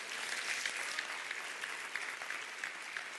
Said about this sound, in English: Clap your hands and say amen to that.